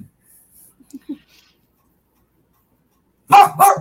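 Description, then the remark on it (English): A dog lets out two sharp, loud barks in quick succession, after a stretch of near silence broken only by a few faint soft noises. “Is that the new dog?”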